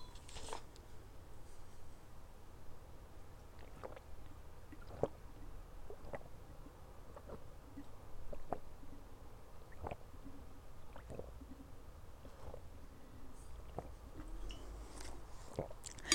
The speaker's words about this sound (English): I'm gonna drink some water. I'm so sorry. I feel like my mouth is sticking together.